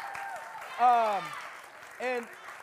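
An audience gives a steady round of applause, a soft wash of clapping throughout, with two loud falling whoops rising above it, one long and one shorter.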